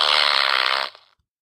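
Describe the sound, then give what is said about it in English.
A loud, buzzy fart sound effect blares steadily for nearly a second, then sputters and trails off into silence. No one speaks. “… let out the loudest, most stinkiest fart”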